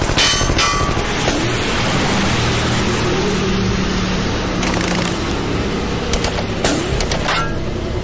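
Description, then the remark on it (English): A half-empty red double-decker bus's engine roars steadily and loudly with a rising whine as it accelerates at night in a Stockholm suburb in November 1967. Near the end, sharp scraping and impact noises break through as it skids and crashes into the wall of a station depot. No one speaks. “The bus accelerates, skids, and crashes into the wall of the station depot.”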